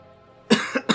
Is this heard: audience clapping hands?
no